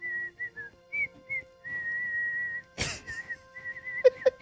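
Someone whistles a halting tune, trying to whistle the flute part of a song, thin steady notes broken by pauses and a sharp burst of breathy air, faltering.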